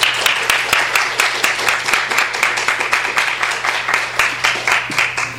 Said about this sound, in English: Let's please give her a warm round of applause.